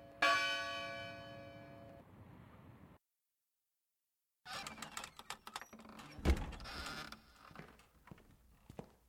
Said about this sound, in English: Oh my goodness, the bell. I must hurry.